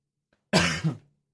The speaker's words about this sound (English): Sorry, I keep coughing.